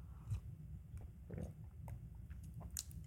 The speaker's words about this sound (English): I'm going to take a sip of tea on that.